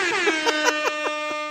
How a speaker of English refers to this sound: Wait. Yep. Deserved another. Oh, okay. Double. It's a double air horn. That's how big this story is.